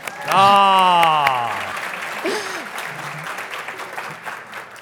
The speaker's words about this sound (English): Thank you. You got an applause. Oh. I haven't gotten an applause yet. I'm jealous.